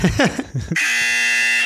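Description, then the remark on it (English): A brief voice is followed by a loud, harsh game show buzzer, being tested before a game, that blares steadily for about a second, a flat electric drone ending abruptly. “Classic buzz. Can't go wrong with a classic buzz.”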